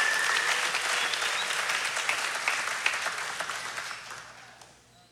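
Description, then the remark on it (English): An audience claps for mothers who said yes to life, a steady, dense, bright round of applause that gradually thins and fades out over about five seconds, with no voices heard. “Let's give a round of applause for the moms that said yes to life.”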